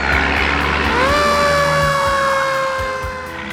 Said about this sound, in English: Do you know what that sound was? It was a fire truck.